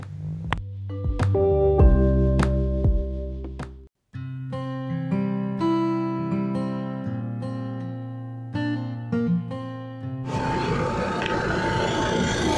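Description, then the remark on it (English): A road line-painting machine outside, painting crosswalks at an intersection, drones loudly with a deep, harmonic engine hum that shifts in pitch, briefly cutting out once, then gives way to a harsh, steady hissing roar. “It's not even a jackhammer. It's some kind of machine where they're going to paint all of these, I guess they're crosswalks in this dangerous intersection, finally.”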